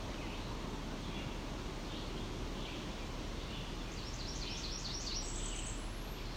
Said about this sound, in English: Okay. This spot is slightly more open now. I don't think this bird cares I'm here.